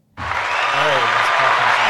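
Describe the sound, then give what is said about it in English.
A canned applause sound effect, played from a soundboard button, bursts in abruptly and holds steady: a dense, hissy wash of crowd clapping that stays loud and even to the end, with a faint murmur of voices inside it. “So they just clapped it.”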